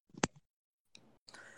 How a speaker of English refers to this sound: And when it's wrapped around your neck, you hear tiny interlocking gears clicking.